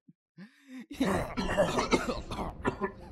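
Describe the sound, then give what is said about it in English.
A voice imitates a rough, phlegmy old man's smoker cough: a brief strained groan, then a run of harsh, hacking bursts that sputter out. “Never seen her smoke a day in her life, but she also has a fucking old man smoker cough.”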